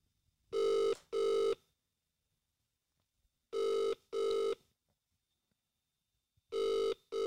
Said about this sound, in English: It's ringing. It's ringing. It's ringing. Guys, it's ringing. No pickup so far, guys.